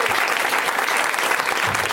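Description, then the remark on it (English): An audience breaks into sustained applause, a dense, steady wash of many hands clapping at an even, fairly loud level throughout, with no voices rising above it. “And then, of course, let's give it up to him one more time.”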